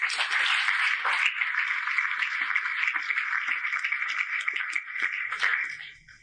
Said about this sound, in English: And that is wonderful, and I think we should applaud.